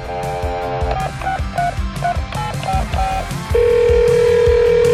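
A phone call being placed: a steady dial tone, then a quick series of dialing beeps, then a loud sustained ringing tone, all over a low rhythmic musical backing with no talking.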